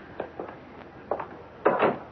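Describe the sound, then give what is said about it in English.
A door is handled: a couple of soft wooden knocks and creaks, then a louder, fuller thump as it swings shut, with no voices. “Come in. The door.”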